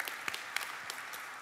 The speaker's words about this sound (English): You can go ahead and clap for that.